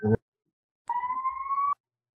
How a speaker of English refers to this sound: I have sirens outside, so.